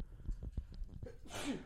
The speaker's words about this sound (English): Excuse me. Bless you.